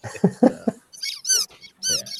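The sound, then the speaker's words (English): A short series of sharp, high-pitched squeaks, about four bursts in quick succession, loud, following a few brief low grunting sounds at the start. “The squeak, the famous squeak.”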